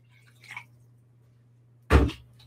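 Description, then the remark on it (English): About six tablespoons of water are added to a bowl with olive oil for pizza dough: a faint, brief trickle first, then one short, loud splash with a soft thud, over a steady low electrical hum. “And now 6 tablespoons of water, approximately 6.”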